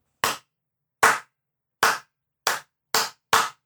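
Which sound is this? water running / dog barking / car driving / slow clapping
slow clapping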